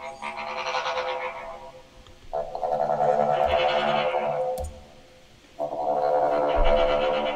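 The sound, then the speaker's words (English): Choppy staccato low woodwind notes, the 'staccato waves' effect from the Heaviosity Vento Woodwind Library, surge in three wave-like swells, each building and falling away with a rapid, buzzy, almost croaking texture over a steady low tone. “Let's see, staccato waves.”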